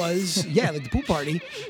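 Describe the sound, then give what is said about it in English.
A horse whinnies on a film soundtrack in a shaky, wavering cry that rises and falls over a second or two, fairly loud. “There was a horse neighing on the soundtrack.”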